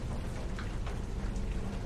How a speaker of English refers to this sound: And plus, it's raining out there, as I hand it over.